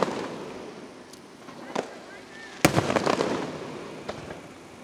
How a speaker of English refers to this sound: Continuing the fireworks off of the Lincoln Memorial Bridge here downtown.